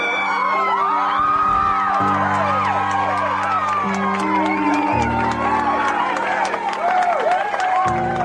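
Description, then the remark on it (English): Hundreds of people waiting outside gate C8 at Will Rogers Airport erupt in loud, sustained cheering as John Smith emerges from the gate: many voices shouting and whooping at once with scattered clapping, over a steady low droning tone that shifts pitch a few times. “The crowd erupted.”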